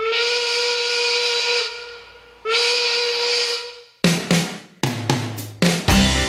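Two long, loud steam whistle blasts with a breathy hiss, separated by a brief pause, followed by a series of sharp, ringing metallic hits, played as the intro of a song at a live concert. No one speaks.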